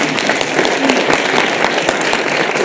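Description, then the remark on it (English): An audience applauds steadily, a dense wash of many hands clapping at once with a few sharper individual claps standing out, loud and sustained throughout with no voices over it. “You can clap.”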